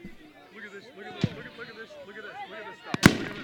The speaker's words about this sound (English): As the fireworks are still going off on the right side, right behind the right end zone.